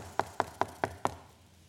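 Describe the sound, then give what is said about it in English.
Five firm, evenly spaced knocks pound on the wooden door of a house, each a sharp hollow thud with a short ring, then quiet. “As he begins to pound on the door, he hears a voice from inside.”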